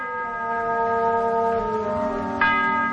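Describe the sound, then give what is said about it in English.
A clock bell strikes eleven o'clock with a rich, sustained metallic ring, then sounds again over the lingering hum, part of a slow series of chimes marking the hour. “It's 11 o'clock.”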